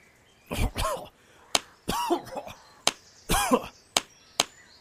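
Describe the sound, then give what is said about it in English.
A man who has just fallen into water has three harsh coughing fits, each a ragged, gasping burst as he coughs the water out of his lungs, separated by sharp, loud smacks as someone slaps his back. No talking. “I coughed the water out of my lungs.”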